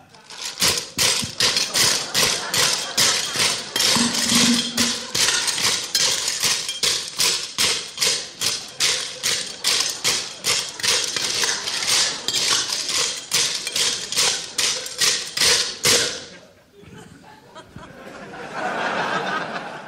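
Loud, rapid clattering and rattling of items on a trolley and of ice being jostled, keeps up steadily for about sixteen seconds before dropping to a softer, scattered rustle.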